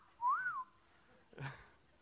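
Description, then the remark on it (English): A person gives one short whistle that slides up and then back down in pitch, fairly clear, followed by a brief breathy rustle and quiet. “I can't whistle very good.”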